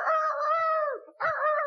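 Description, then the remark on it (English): A loud voice of the wrestler The Red Rooster imitates a rooster crowing: one long, strained cock-a-doodle call, a brief break, then a second crow starting up. “The Red Rooster is going crazy.”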